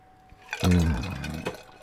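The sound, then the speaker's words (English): Water pours briefly into a glass, a gurgling splash with a shifting ringing tone that lasts about a second, then trails off quietly. No one speaks. “Oh, I love getting that water.”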